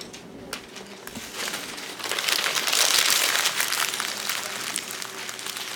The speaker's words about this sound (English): when the timer dings, I want you to take your response, make sure your name is on the top of it, and then crumble it up into a paper ball that's going to sit on your desk.